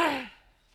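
One short, loud cough with a voiced, slightly rasping edge, fading quickly into near silence with no talking around it.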